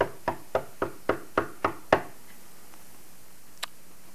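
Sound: knocking on a door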